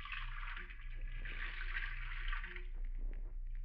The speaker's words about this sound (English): And then walk to the sink. You empty it. You fill it with water from the faucet.